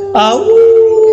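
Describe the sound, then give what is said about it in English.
A dog lets out a single loud, wolf-like howl that swoops up at the start and then holds a steady, wavering note for about a second. “Oh, you want to howl like a wolf? Can you howl like a wolf?”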